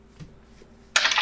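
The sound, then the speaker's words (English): After a near-silent moment, a sudden burst of dense, bright rattling clatter as damage dice are rolled across a tabletop during a tabletop role-playing game, continuing to the end. “Yeah, so roll the damage dice twice.”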